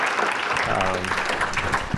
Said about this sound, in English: Great. Well, let's get a round of applause for our excellent panelists.